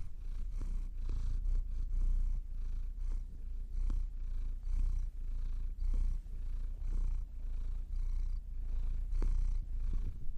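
A male cat purrs steadily, a low rumbling vibration that pulses in a regular rhythm of breaths for the whole stretch, with no voices over it.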